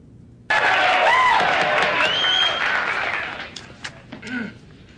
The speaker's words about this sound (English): This is where we were in the hearing. Hoover, who's the president of the Delta House, gets up to speak. And we're in the middle of all the cheering now.